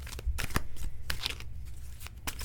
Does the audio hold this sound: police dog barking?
no